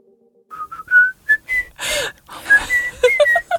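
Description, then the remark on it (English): Someone whistles a bouncy, jaunty tune, short bright notes hopping up and down in pitch with a quick breathy rush partway through, no talking. “Don't laugh at me whistling in a jaunty fashion.”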